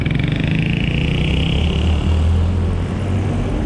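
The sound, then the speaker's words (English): Loud, steady road traffic, with a vehicle engine droning and rumbling as a car passes, its tone shifting slightly over a few seconds. No one speaks. “Here, I'm just giving you the front so you guys can see what I got to deal with traffic here.”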